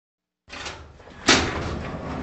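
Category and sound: household object, door being opened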